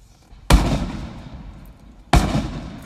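Two loud fireworks explosions, each a sudden sharp boom followed by a long rumbling decay, spaced about a second and a half apart with no talking.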